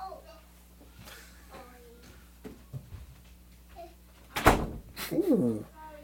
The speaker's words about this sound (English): Close the door, babe.